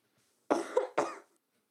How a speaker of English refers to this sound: I promise I coughed away from the mic. I'm really sorry. I'm really coldy. It's gross.